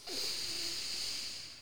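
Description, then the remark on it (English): A deep, airy breath taken during a guided breathing exercise, a steady hiss of air that swells quickly and then slowly tapers off, with no talking. “Now, second breath, breathing in your enoughness.”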